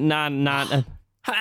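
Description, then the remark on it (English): A drawn-out, voiced 'ahh' breath builds for almost a second, then after a brief silence a sharp, noisy burst erupts, like a single sneeze. “Is there a Japanese cultural thing you do after someone sneezes?”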